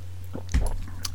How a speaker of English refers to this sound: And now I will pause for a second, have a sip of coffee.